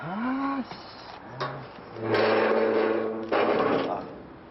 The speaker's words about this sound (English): First, we hear the banging on a gate